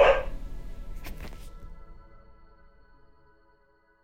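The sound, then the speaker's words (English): A single sharp dog bark rings out at the start, then trails off into a long, fading echo with a faint hum lingering underneath. No one speaks. “Dog barking.”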